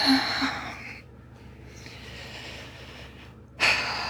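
Slow, deep breathing done as a breathing exercise alongside a distress tolerance technique: a long airy breath, a quiet pause, then another breath beginning sharply near the end. No one speaks.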